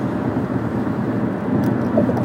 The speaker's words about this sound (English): Yeah, heavy traffic out here today, I heard. I wasn't the only one dealing with it this morning. I think it's a combination of kids going to school and people got back from their vacation.